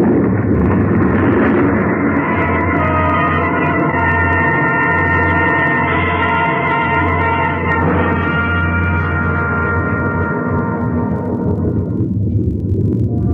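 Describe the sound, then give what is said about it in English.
A massive avalanche of snow and ice, loosened from the ridge above by gunshots, roars without a break, a loud, deep rumbling wall of sound with a grinding, droning edge that dulls slightly toward the end. No one speaks. “It must have been the shots that loosened the snow and ice on the ridge above.”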